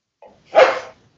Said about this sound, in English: And there's a dog. That's okay. The dog can stay in. It's fine.